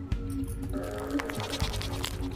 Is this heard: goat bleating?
yes